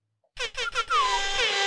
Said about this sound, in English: So Evan Lefevre, shit, he needs an air horn.